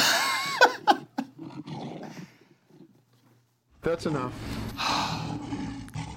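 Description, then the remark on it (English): A person lets out a growling, roar-like vocal imitation of a lion's roar, loud, broken by a short pause before a second harsh burst, with a brief spoken line mixed in. “Coming in like a lion.”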